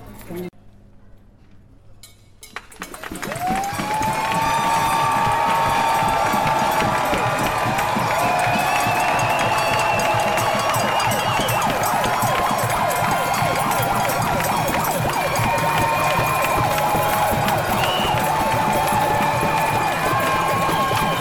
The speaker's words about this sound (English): And what you hear is the sounds vibrating and resonating from thousands of protesters, black, white, Asian, Latino, Arabic, young and old, even children, everyone making noise for 8 minutes straight as a demonstration in solidarity with George Floyd